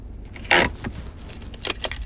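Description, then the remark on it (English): A steady low rumble of the speaker's car being driven, broken by a sharp, brief burst of rattling noise and a few scattered clicks and knocks. No one speaks. “Sorry, I'm driving. That was my car.”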